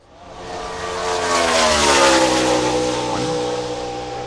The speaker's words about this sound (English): You're going to hear a car noise